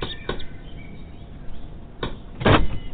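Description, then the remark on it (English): A few sharp knocks land on a door in Fort Lauderdale at uneven intervals, the last one the loudest and fullest, with no voices and only a faint background hum between them. “Here, knock on that door there.”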